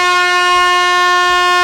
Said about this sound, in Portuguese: A vitória é da buzina que pegou o Fábio. Olha aqui a buzina especial do Fábio.